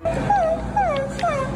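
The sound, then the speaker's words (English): A woman acting like a little puppy dog whimpers in a series of high, whiny cries, each sliding downward in pitch, about four in quick succession with no talking. “She acts like a little puppy dog.”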